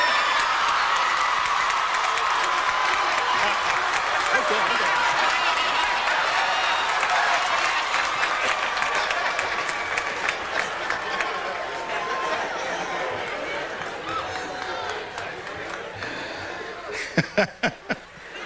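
A large audience at a commencement speech applauds loudly with some cheering, a dense sustained roar of clapping that gradually thins out, ending with a few scattered individual claps.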